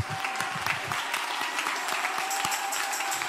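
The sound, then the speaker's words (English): An audience claps their hands together in praise to God, a dense, sustained wash of applause from many people at moderate loudness, with no clear pauses throughout. “You don't have time for me to tell it, but just let this hand clap. Let this hand clap be my testimony.”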